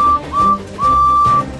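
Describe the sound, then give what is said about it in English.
A steady, high-pitched train whistle from the engine Percy peeps three times as he chases Diesel 10 through Wellsworth Station: two short toots and then a longer held blast, loud over a low chugging rumble with no talking. “Percy peeped his whistle and chased after him.”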